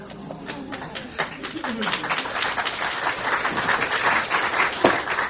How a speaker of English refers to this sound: Now, see, I don't know what the applause means. It means the story's a lot better than the poem.